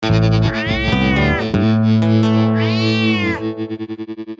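A cat meows twice, loud, with drawn-out rising-and-falling cries that sound slightly processed, ending in a pulsing, fading electronic echo.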